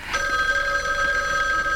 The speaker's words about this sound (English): What does matter is that the phone rings.